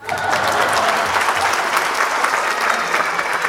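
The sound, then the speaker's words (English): Steady applause sound effect played from a soundboard, many hands clapping in a dense, even wash that holds at a constant loud level for a few seconds, with no voices standing out. “Laughter, applause.”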